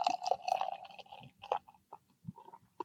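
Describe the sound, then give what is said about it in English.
Märzen beer from an Anaheim brewery pours from a can with art by LA artists in a steady gurgling stream with a fizzy hiss, then breaks into a few short glugs and splashes as the flow stops. No one speaks. “All right, I'm giving it a pour.”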